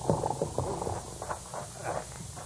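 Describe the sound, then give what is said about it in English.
The hooves of Judge Flint's paint horse clip-clop at a steady walking pace on hard ground as he rides this way, at moderate volume with a faint murmur of background noise. “It looks like Judge Flint heading this way on his paint horse.”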